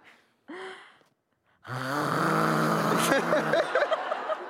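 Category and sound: vocal imitation, person imitating loud snoring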